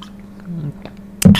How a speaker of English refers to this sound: my throat's kind of getting a little dry. Let me swallow this water.